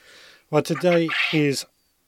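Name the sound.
chickens clucking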